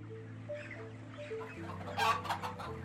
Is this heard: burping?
no